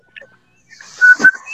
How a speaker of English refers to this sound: And what else is happening is other people are whistling along with our traditional whistler that signifies the end of our 2 hours together on a daily basis.